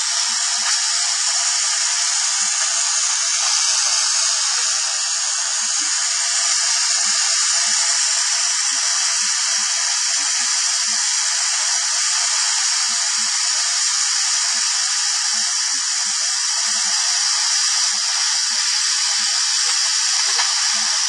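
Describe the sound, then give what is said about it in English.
A loud, steady hiss of steam released from a pressure cooker cooking onions and garlic, its valve pressed straight down, continuous for the whole stretch, with faint irregular sputtering and crackling of moisture coming out with the steam. “And that noise is moisture coming out along with the steam.”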